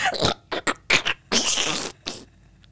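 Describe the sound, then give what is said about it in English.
A voice imitates the wet, squelchy squish of somebody stepping on a tomato, with about six sputtering, juicy bursts, the longest in the middle. “It was somebody stepping on a tomato.”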